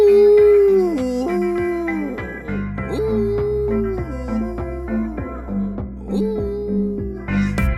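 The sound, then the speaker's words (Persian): A dog howls and whimpers after being hit by a balled-up sock, in long, wavering cries that rise and fall, fairly loud, with short yelping breaks between the drawn-out tones. “یه وقتایی کمونه میکنه میخوره به سگم.”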